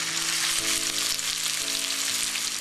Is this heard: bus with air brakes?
no